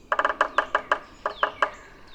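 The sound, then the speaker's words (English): A yellow-bellied sapsucker drums on wood in the woods in an uneven, stuttering, Morse code-like pattern: a quick burst of taps, then slower, irregularly spaced knocks with a pause before the last few. The drumming is clear. “This is our only native woodpecker that has an uneven Morse code-like drum.”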